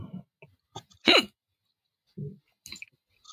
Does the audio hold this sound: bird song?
no